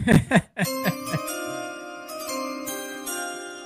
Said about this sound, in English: I didn't allow Nino to hit the bell there. I apologize. hey, Nino, the Jacksonville Jaguars, the pick is in. Go ahead.